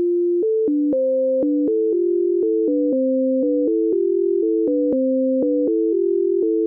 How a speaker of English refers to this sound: Yet when each channel is played separately, you instead hear patterns that leap around in pitch. Equalizing the balance causes you to reorganize the tones so that you again hear two smooth melodies.